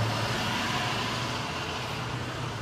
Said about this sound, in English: Big trucks never come. Why all of a sudden, now that I'm on Facebook Live, now this huge truck comes by.